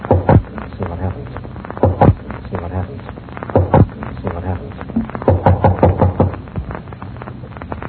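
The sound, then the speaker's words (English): Several firm knocks on the door of a dilapidated-looking place with no doorbell, coming in short, irregular groups with pauses between them, over a low, steady background murmur. “I don't see a doorbell anywhere. No? Well, I'll knock and see what happens.”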